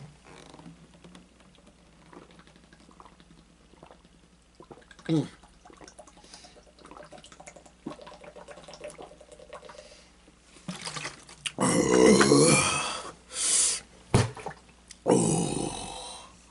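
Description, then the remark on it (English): A quiet stretch gives way to loud drinking of water: a run of wet gulps and swallows, a short pause, then another burst of gulping. “I'm gonna drink some more water.”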